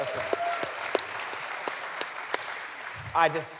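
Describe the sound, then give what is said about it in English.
Steady audience applause, a dense wash of many hands clapping with a few sharper claps standing out, and a voice briefly cutting through near the end. “Thanks for the applause, but that wasn't a pander statement.”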